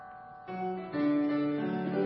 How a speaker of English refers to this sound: There we go. All these bells.